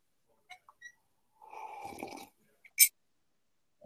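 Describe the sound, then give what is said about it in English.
A pug lying on the floor snores once, a rough, rattling breath of just under a second, fairly quiet, with a few faint snuffles and a sharp little snort around it. No one speaks. “pug just snoring. He's on the floor.”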